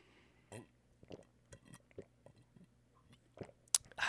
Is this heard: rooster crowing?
no